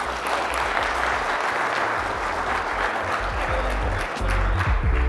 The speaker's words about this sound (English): So thank you for coming, and let's end it by giving these guys a round of applause.